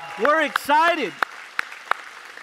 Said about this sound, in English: And so let's give Resonate Oakland a big round of applause. We are, come on, you can do better than that. Come on, we're excited.